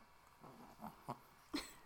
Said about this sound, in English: Excuse me. That's my Ami, my doggy.